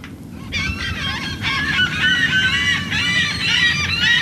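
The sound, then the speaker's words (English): A noisy flock of seagulls and pelicans calls continuously with overlapping harsh, honking cries, fairly loud over a steady low rumble of wind or water, at the edge of a wide mangrove-flanked channel a few miles from an airport while a team unloads a yellow survey boat from its trailer. “Flocks of pelicans and seagulls hover nearby as the team unloads the yellow survey boat from its trailer.”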